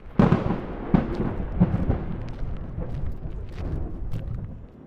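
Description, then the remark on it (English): Thunder rumbles steadily, opening with three sharp cracking bursts in the first couple of seconds before settling into a loud, continuous low roll. No voices are heard. “Sounds like it's gonna rain.”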